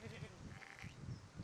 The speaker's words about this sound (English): Exactly, sheep. See, the sheep thinks it's a good idea, don't you? Exactly.